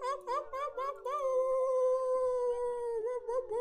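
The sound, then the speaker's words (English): Several people on an online call unmute their microphones and imitate wolves, joining in long, wavering howls, overlapping in sustained rising and falling tones that hold steady and loud before breaking into a few choppy yips at the end. “Go ahead, make some like wolf noises and all of that as we thank everyone for joining in.”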